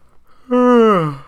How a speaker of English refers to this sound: That was a fake yawn. Yeah, if you talk about it, then you feel like you have to.